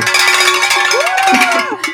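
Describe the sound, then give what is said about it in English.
Stereo cowbells are rung as a show segment intro, clanging repeatedly in a dense, bright metallic jangle lasting two seconds, with overlapping ringing tones and a rising-falling tonal sweep partway through. “Stereo cowbells.”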